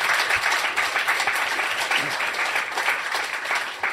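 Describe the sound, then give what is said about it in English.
An audience claps steadily for several seconds to welcome speaker Laurence Goldstein before his talk on paradoxes, a dense, even wash of many hands with bright crackling texture and no voices standing out. “So without further ado, I'd like to get a massive round of applause for the wonderful Mr. Laurence Goldstein.”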